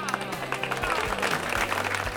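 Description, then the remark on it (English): A short burst of audience applause, a dense, steady patter of many hands clapping for about two seconds, with a faint low hum running underneath. “You call that applause? That's not applause.”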